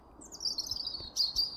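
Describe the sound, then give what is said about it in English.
Birds chirp and trill in a steady, high-pitched stream, with a slightly louder burst of tweeting near the end, over faint background noise. “The bird song stopped, along with everything else.”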